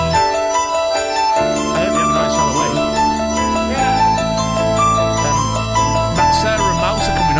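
Instrumental music plays steadily for several seconds, layered sustained tones with bright chiming notes on top and a low bass line shifting underneath, fairly loud and with no voices.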